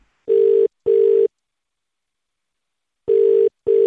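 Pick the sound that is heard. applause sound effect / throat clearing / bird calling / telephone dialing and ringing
telephone dialing and ringing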